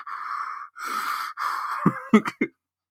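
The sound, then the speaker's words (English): A voice imitates heavy, muffled breathing into a rubber mask: three long, raspy, hollow breaths followed by a few short, sharp huffs, fairly loud, with no talking. “I'm just imagining Froswell with his rubber mask on, just breathing really heavy into it”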